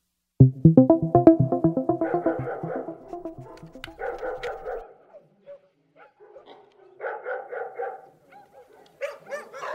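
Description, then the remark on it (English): A dog tied up outside barks in a rapid burst of sharp yaps, then breaks into whiny, drawn-out barks and yelps in separate bursts, with short pauses between them. “Cinnamon! Come on! I'm tied up out here. Brenda won't let me in.”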